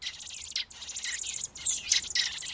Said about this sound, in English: I feed them, and then before I can walk inside to cool off, they're hungry again. These are two robins, juvenile robins, not quite ready.